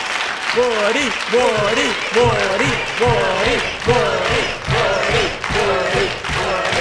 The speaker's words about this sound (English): And God bless you for that wonderful, warm, and generous applause.